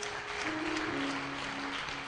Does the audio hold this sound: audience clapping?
yes